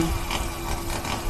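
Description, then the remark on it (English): A chainsaw runs steadily with a droning, buzzing whine that holds one pitch and swells slightly now and then, at moderate volume with no voices. “Here goes the chainsaw.”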